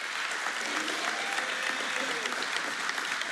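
A crowd claps steadily in dense, continuous applause, with scattered cheers and whoops rising over the sustained clatter of hands, as city council members are introduced, here Council member James Tate.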